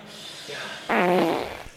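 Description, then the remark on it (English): A loud, buzzy fart sound effect bursts out for about half a second after a brief quieter lead-in, then trails off into a low rumble. “When I was just about to climax, I blurted out, oh, hold on a second, and ripped a huge fart.”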